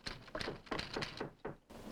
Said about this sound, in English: as inside the train, in her own compartment, reporter Mary Prescott, played by Claire Trevor, works on her story. There is a knock at the door.